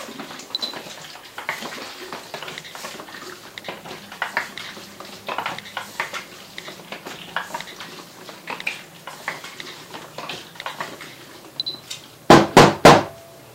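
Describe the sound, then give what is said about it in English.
A film developing tank holding DDX developer is agitated: liquid sloshes and swirls steadily inside the closed container, then ends with several sharp, loud knocks as the tank is tapped. “And so, let's just get ready for the agitation.”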